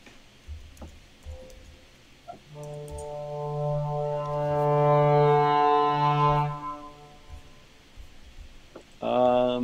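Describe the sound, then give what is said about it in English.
A sustained low woodwind tone from the Heaviosity Vento Woodwind Library swells steadily louder over several seconds, rich and reedy, then fades away, followed by a brief bright burst at the end. “This is low woodwinds. So it's just a crescendo.”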